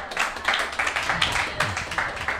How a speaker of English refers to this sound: Why is everybody clapping? Because he didn't cheat.